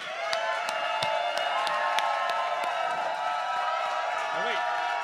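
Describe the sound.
An audience cheers and whoops loudly and steadily as the next panelist of a live show is introduced, with scattered claps cutting through a dense wall of crowd voices for about five seconds.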